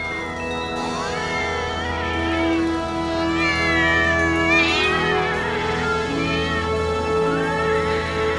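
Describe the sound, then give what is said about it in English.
Several stray cats meow and yowl over one another in a steady chorus, their rising and falling cries overlapping continuously above a low droning background hum, fairly loud throughout. “tableaus from popular movies featuring stray cats, like this one from Blade Runner”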